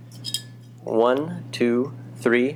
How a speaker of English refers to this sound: So we end each episode by clinking our glasses and saying Provecho, which is like means to your health. Thanks for the meal. I have a plastic cup.